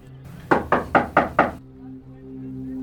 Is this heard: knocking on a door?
yes